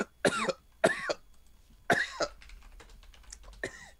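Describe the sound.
A man in a corner coughs harshly several times, coughing up blood: about four loud, irregular hacking bursts spread over a few seconds, with quieter rasping breaths between them and no speech.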